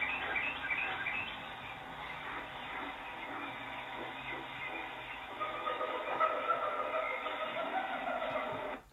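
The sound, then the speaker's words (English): A dense, continuous medley of bird, hyena and elephant calls, chirps, whoops and cries layered together, sounding muffled and lo-fi at a steady level before cutting off abruptly, with no talking. “And sounds from animals like birds, hyenas, and elephants.”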